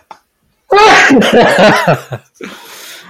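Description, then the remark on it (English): A loud, drawn-out sneeze with a strong voiced, almost howling quality, followed by a short breathy, hissing exhale as it trails off. “I think that sneeze has been howled in the entire day, to be honest.”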